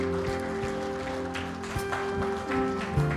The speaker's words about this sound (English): Can we have a huge round of applause for everyone who made that decision this morning?